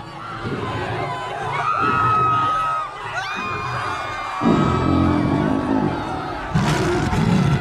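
A large audience in the stands screams and cheers loudly, a dense roar of voices with high whoops rising over it, surging in waves and swelling stronger toward the end.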